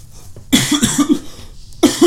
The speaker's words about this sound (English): Good God. And a coughing spell.